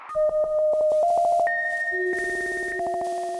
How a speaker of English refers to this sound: The music you are about to listen to was generated by four living plants. On lead synthesizer, a philodendron.